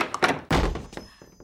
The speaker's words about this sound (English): It's just a plain door. Could that really be the Overlord's? One way to find out. On three, I'll turn the knob and you kick in the door. Got it. One, two, three!